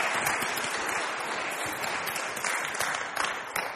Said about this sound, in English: Give them a round of applause for being excellent. Thank you very much.